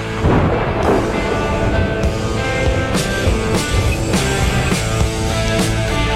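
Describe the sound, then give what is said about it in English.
Loud, rumbling thunder cracks and booms over a dense, driving musical bed, with sharp hits around the middle and end. It is the intro of the Thunder and Lightning show on SuperTalk Mississippi. No one speaks. “I wasn't sure if that was the intro to the show, Rhino, if that was the actual weather outside here in New Albany.”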